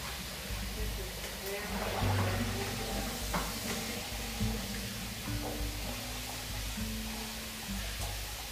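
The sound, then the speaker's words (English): Tap water runs in a steady, fairly loud hiss for several seconds while dishes are washed with water and soft soap, with a few faint knocks and a low droning tone underneath. “I'm gonna use water and soft soap here. Clean out these dishes.”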